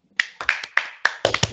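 A brief burst of applause: a handful of sharp, separate hand claps in a loose, uneven rhythm, moderately loud, with no voices over them.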